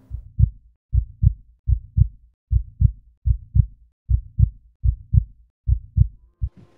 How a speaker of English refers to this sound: Like most people, after a long day, all I want to do is kick back, relax, and listen to the sound of my own heartbeat.